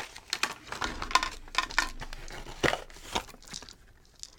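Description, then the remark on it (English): Marshmallows rattle inside the crinkly packaging of a hot chocolate bomb, producing irregular bursts of rustling and soft, patter-like shaking for several seconds, with no one speaking. “The packaging. You hear that? I can hear the marshmallows inside.”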